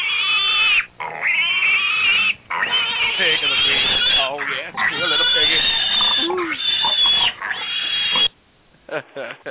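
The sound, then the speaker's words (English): A loud, busy burst of pig oinks and squeals runs almost continuously for several seconds as a jingle, with a few brief gaps, then trails off into short scattered grunts at the end. “the pig of the week this week actually goes to”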